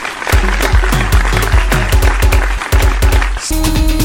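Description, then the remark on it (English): Steady crowd applause rushes along over a rhythmic musical track with thumping bass beats and falling tones, the clapping forming a dense, continuous wash throughout. “Give the applause.”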